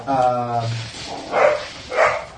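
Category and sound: animal, dogs barking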